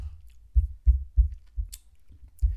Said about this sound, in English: I'll take a sip of my tea.